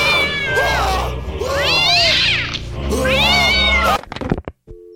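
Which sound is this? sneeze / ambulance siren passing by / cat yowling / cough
cat yowling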